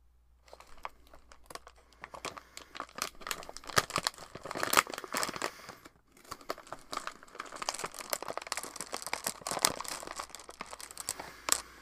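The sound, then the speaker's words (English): A plastic snack bag crinkles and rustles almost nonstop, with sharp bursts of crackling and a few crunchy chews as someone eats peanut M&Ms straight from it. No one speaks. “I'm eating them straight from a bag, so let's start.”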